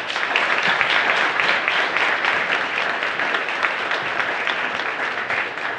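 A crowd applauds steadily for several seconds, a dense, even patter of many hands clapping at a strong, constant level with no voices standing out.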